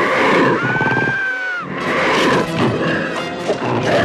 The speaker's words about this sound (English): Yeah, and like the cat design in this, I'm like, yeah, that's an evil cat. Like it doesn't even sound like a cat. It makes monster noises. It makes monster noises.